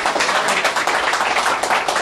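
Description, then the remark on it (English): A crowd applauds the performers steadily, many hands clapping in a dense, continuous wash of sound that stays loud and even throughout, with no speech over it. “Keep that applause going for everybody you saw.”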